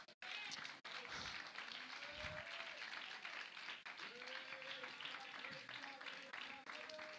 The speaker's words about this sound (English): The name of Jesus is what has authority. The name of Jesus is what has power. If you're thankful for that name, would you clap your hands?